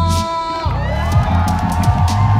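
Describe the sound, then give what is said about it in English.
A crowd at a headquarters party celebrating the Wiley-Playcube collaboration cheers loudly and steadily for Minerva, with whoops and shouts layered over a dense, continuous roar that holds for a couple of seconds. “Let's hear some cheers for Minerva!”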